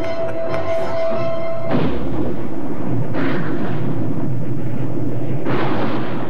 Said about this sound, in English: I'm so upset because you mentioned gushers earlier, and I just keep likening the explosion to a strawberry gusher. It's bizarre.